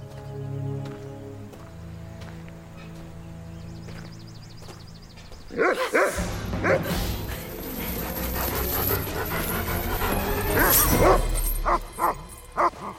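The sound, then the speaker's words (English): A low electronic hum gives way to loud, repeated barking from a holographic robot dog named Glitchy, which greets Casey as she approaches the house. The yaps come in quick bursts with a synthetic, glitchy edge. “And as Casey approaches the house, she's greeted by everyone's favorite holographic dog, Glitchy, which is his canonical name, according to an interview that we conducted with Damon Lindelof for our first anniversary commentary.”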